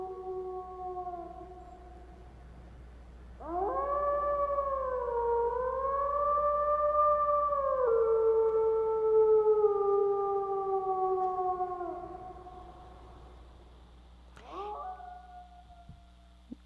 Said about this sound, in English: It's actually a wolf, not a coyote, but just to give a sound for us so we get a feel for it.